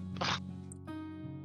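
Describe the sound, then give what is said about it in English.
A quick zipping rasp as someone switches dice, like a small dice bag being opened, lasting a fraction of a second, followed by a steady tonal background hum with no voices. “I gotta switch these dice. Hold on a second.”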